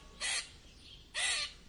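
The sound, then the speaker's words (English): A squirrel gives two sharp, raspy alarm calls warning of a large bird, each a short harsh burst separated by a brief pause, loud, with no talking. “Hickory heard her warning call and quickly leaped on to the closest tree, holding himself still.”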